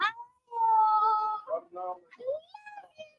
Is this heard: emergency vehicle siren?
no